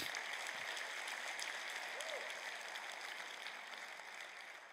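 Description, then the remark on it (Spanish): An audience applauds Christ steadily, a dense wash of many hands clapping at once that holds level for several seconds and eases slightly toward the end, with no speech over it. “Aplauso a Cristo.”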